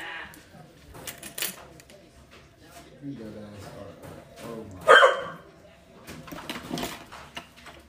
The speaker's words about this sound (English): A wild ass dog.